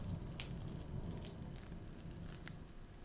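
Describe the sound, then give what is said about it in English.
In a sermon demonstration, water standing for God's word is poured onto something soft and absorbent representing a soft heart, which soaks it up, making a quiet, steady wet squishing with occasional small drips and splashes over about three seconds, without any talking. “what happens when I pour the water onto the stony heart?”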